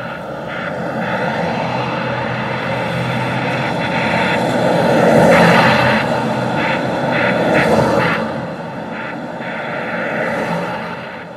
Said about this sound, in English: The sweeps of passing cars as the rubber tires clutched wet asphalt.